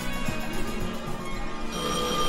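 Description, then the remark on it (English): A telephone rings steadily and fairly loudly, a sustained bright bell-like tone filling the whole moment with no voices over it. “Answer that phone.”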